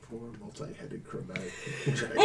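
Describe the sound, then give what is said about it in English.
A person talks briefly, then a sudden loud sneeze bursts out at the very end, cutting sharply over the voice. “Excuse me.”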